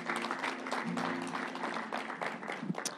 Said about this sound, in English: Go ahead, clap it up. Let's praise him. Let's praise him.